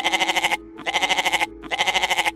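A goat bleating sound effect: a goat bleats three times in quick succession, each call loud and wavering with a shaky vibrato, separated by short pauses, with no voices around.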